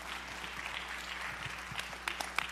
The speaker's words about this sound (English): So can y'all give God a round of applause today?